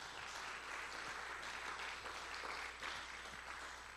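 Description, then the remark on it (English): Sustained audience applause given to the Lord, a dense, even wash of many hands clapping at steady loudness for about four seconds, with no voices heard over it. “Can we give the Lord a good round of applause?”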